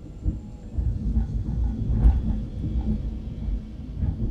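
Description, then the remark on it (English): A deep, rolling rumble of thunder follows a lightning flash as rain is about to pour. It fills the whole stretch, steady and low, with a brief swell partway through. No one speaks. “Wow, lightning just flashed in my eye, and I'm kind of okay with it.”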